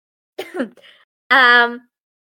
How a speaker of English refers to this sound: sorry, now I'm coughing.